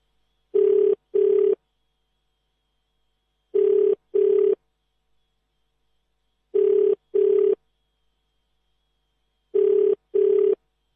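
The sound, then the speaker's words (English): A telephone ringback tone repeats in four double-pulse bursts about three seconds apart, steady and clear with silence between, ringing on with no one picking up, as Radio Veritas 576 AM tries to reach someone by phone. “And the phone is just ringing, just like this one.”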